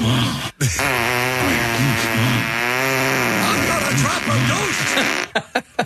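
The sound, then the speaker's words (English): A played fart sound effect: a long, buzzy fart sound lasting several seconds, its pitch wobbling up and down as it sputters, then breaking into a few short, choppy bursts at the end. “Play a fart and then him make the noise, if you would, please.”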